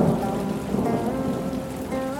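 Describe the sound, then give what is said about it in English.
Heavy rain pours down in a steady, dense hiss with a deep rumbling undertone, loud throughout without letup. “By the time Tang finished his self-reflection, it began to pour within several thousand miles of the altar.”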